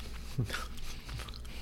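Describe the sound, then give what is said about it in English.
A crisp bite followed by a few crunchy chewing sounds on something hard, like a carrot or nuts, fairly soft overall with a steady low hum underneath. “Take a little bite.”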